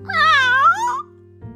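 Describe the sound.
A person imitates a cat with one drawn-out, wavering meow lasting about a second, fairly loud over a low steady hum, then near silence.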